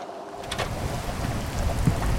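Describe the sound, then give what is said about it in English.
A steady wash of rain with a deep, rolling low rumble underneath, from a storm with lightning and a cold front rolling in from an island over choppy water at a beach; continuous, with no voices. “Looks like this storm is rolling in from that island.”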